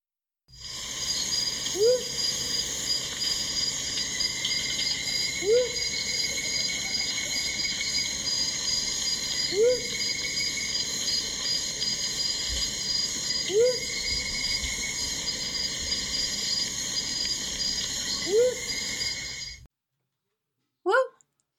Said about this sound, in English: And the Whooping Mop Mot is a member of the single note group. So I want to play a clip of this song because it was basically the reason that I chose this bird.